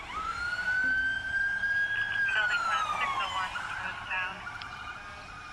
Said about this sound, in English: A second, then third round of sirens approached, and I heard doors slamming.